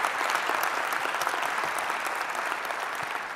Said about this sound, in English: So let's give them one more round of applause. Great job.